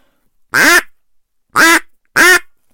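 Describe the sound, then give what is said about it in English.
Three short, loud, nasal quacks blown on a duck call, the first separated by a longer pause and the last two closer together, with no talking around them. “So I've got a call right here.”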